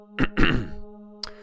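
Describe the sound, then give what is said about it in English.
A man clears his throat in two short, gruff bursts, with a steady low hum running underneath and a faint click shortly after. “The planeswalker bit down on the impulse to lunge at the Baron, schooled herself for steadiness, lifted the arcbow, only to have the Baron clear his throat.”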